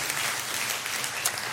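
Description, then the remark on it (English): A crowd at Southwest claps together on Mother's Day in a round of applause for the moms, a steady, dense wash of applause that stays loud and even for the whole short stretch, with no voices over it. “And would you just join me in giving them a round of applause and thanking them for all that they do.”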